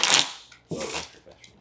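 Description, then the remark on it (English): A deck of Uno cards is shuffled: two quick papery riffling bursts, the second following a brief pause, with a faint soft rustle trailing off at the end. “Shuffling.”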